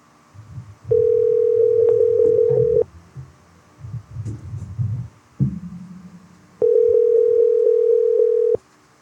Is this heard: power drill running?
no